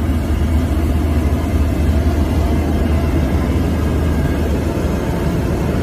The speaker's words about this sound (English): A real airplane. Clearly you can hear the whooshing of the wind.